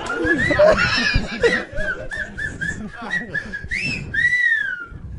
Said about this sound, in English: That was me whistling.